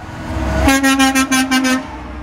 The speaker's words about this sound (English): You hear the honks. I want you to pay attention to the honks.